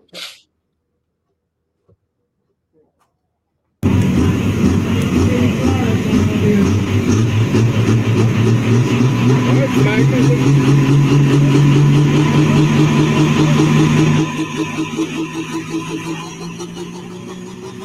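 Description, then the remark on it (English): After a brief click and a few seconds of quiet, a truck engine roars to life, running loud and rough with its pitch slowly climbing, then easing slightly lower near the end. “Yeah, video I sent you of that truck when it did run. It was a strong runner.”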